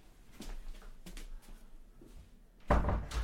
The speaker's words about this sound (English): I'm just going to close this door.